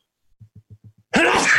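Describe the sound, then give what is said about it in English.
A few quick, soft breathy catches build up before one loud, explosive sneeze bursts out, with no talking around it. “Good bless you.”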